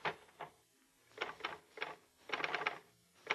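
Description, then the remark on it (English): Muffled portable typewriter held in a lap to deaden noise and vibration, typing a suicide note on a sheet of paper: quiet, irregular bursts of dull key strikes, some single and some in quick clusters, with short pauses between them and no voices. “You insert a sheet of paper into the portable. Put it in your lap to deaden the noise and vibration.”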